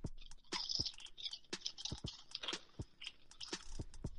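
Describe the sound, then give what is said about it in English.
Crunchy chewing of chips, with sharp irregular crackles and crunches repeating rapidly over several seconds, with no talking. “you have your chips? I got my chips. Go, chew.”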